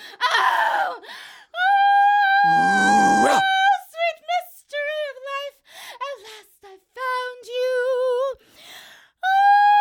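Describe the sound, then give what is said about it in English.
A person in an Open Door Playhouse radio drama production imitates a dog, loudly, mixing short barking yelps with several drawn-out, wavering howls in an irregular series, with no ordinary speech. “Woof, woof. Oh. Hey, what are you doing with that branch? Oh, woof. Oh, yes, bark.”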